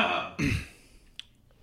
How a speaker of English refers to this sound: I told myself I wouldn't clear my throat in the mic stick because we've been doing that a lot lately.